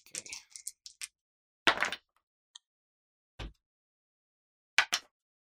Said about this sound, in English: And I get to roll 2 dice.